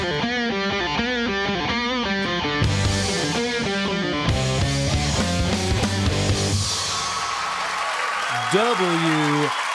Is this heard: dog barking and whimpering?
no